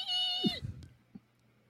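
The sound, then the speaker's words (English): A person imitates the small animal scream of an excited squirrel named Trixie: one sustained, high-pitched squealing cry that drops off abruptly after about half a second, followed by a faint thump, then quiet. “The little squirrel on your shoulder, Trixie, eyes huge, tail twitching like mad, almost seems to scream in excitement, but it's the small animal scream, so it's...”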